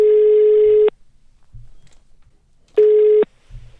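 A phone line's ringback tone plays twice, each steady beep lasting nearly a second with a long silent gap between, heard clearly through the earpiece as an outgoing call waits to connect.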